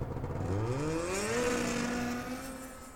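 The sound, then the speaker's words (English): A snowmobile engine revs up, its whining pitch climbing quickly before settling into a steady, loud drone that eases off slightly toward the end as it drives away. No voices. “And with that, Whip Roberts walked away and remounted his snowmobile.”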